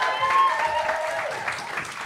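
An audience applauds in a dense, steady wash of clapping that holds at an even loudness for about two seconds, with a faint tonal hum running underneath.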